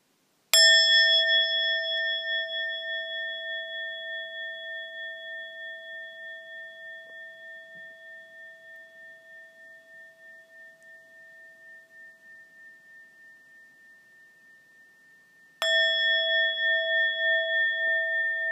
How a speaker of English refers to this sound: We listen to a few sounds of the bell.